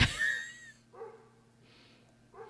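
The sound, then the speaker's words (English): A dog lets out one sharp, loud bark, followed by a softer bark a moment later and the start of another. No one speaks. “The dog doesn't like it either, apparently.”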